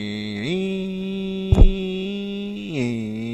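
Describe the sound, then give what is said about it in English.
A voice imitates a car engine stumbling as its air conditioning compressor cycles on and off, with the AC on maximum and the fan on low: a steady humming drone rises in pitch, holds, then drops back, with a brief sputtering stumble in the middle. “The air conditioning compressor's kicking on and off.”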